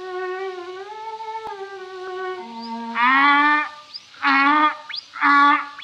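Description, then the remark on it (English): A donkey brays in three loud, harsh, rasping bursts, each rising and falling in pitch, following a steadier droning tone in the opening seconds. “Oh, tell that ass of an ass to stop.”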